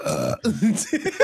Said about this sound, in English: That was a good fucking burp, man. Holy shit.